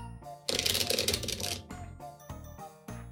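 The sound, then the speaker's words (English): A deck of cards is riffle-shuffled, a loud crisp flutter of cards lasting about a second, followed by a few softer taps and shuffles as the deck is squared up. “Well, anyway, but first we gotta get that good shuffle.”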